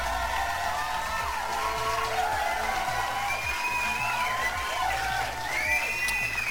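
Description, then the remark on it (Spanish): A crowd applauds and cheers to introduce the film ¿Conoces a Tomás?, with scattered whoops and rising shouts from many voices layered over steady clapping that holds at an even level throughout. “Un pinche aplauso.”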